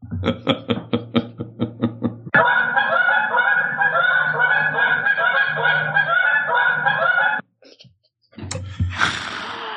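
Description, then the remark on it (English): A flock of geese flying south for the winter honks in a quick rhythmic series, then the whole flock erupts into a loud, dense chorus of overlapping calls, which breaks off briefly before a few more honks. “Geese flying south for the winter.”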